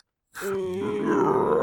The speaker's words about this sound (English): It's my stomach growling. Sorry. Oh, no. I'm so hungry.